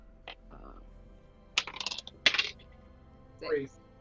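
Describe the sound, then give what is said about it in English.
A six-sided die is rolled (1d6) in a game, rattling and clattering across a hard surface in two quick bursts of sharp clicks, followed by a brief murmur of voices. “Alright, let's do it again. Roll 1d6.”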